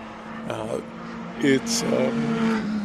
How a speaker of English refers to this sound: This is the Sports Car Championship Series practice number one. These are the cars I love to hear. This is such a pleasure.